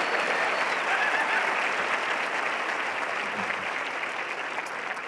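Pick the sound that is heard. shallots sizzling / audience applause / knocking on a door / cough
audience applause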